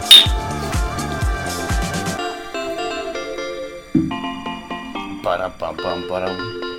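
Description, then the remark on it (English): Glasses clink together in a quick toast in a hotel room in Beijing, a bright ringing chime, followed by voices and a busy, tonal background that continues to the end. “Cheers. Cheers.”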